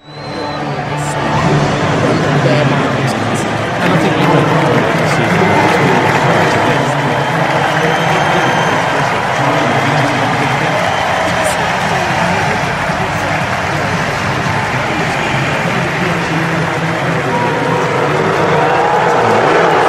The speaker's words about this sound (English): I mean, game number 5 of the World Series, Donald Trump is in attendance. It's the Washington Nationals playing against the Houston Astros, and they put Donald Trump up on the screen, and he got roundly booed.